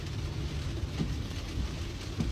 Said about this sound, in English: So he's an atheist. He talks about it. A lot of his channels, and he's like, if God was real, there'd be a lightning strike in 3, 2, 1, and then there's a lightning strike.